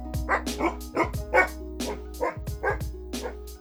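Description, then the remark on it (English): A dog named Dioji barks repeatedly in a quick, steady series of sharp, loud woofs, with a low hum running underneath. “Good dog, Dioji!”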